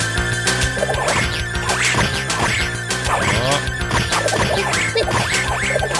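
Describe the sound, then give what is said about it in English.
Busy retro arcade audio from The Simpsons beat 'em up game: repeated smacking hit sounds and crashes over a looping electronic music bed carrying the show's theme, with a short voice sample exclamation popping up amid the steady, loud mix. “We get some voice samples. So we moved on to the Simpsons. Then. Yeah, yeah. We got the Simpsons. You can kind of hear the theme in the background.”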